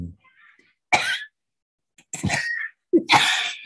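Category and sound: human body sound, cough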